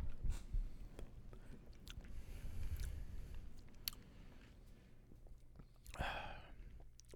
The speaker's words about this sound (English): I'm gonna give this guy one more sip. One more.